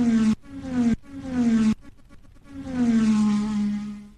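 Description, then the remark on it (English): Race car engines whine past on a track in quick succession, each roar dropping in pitch as it goes by, with a choppy, sputtering stretch before one long, loud pass fades away. “We gotta let the cars go around the track.”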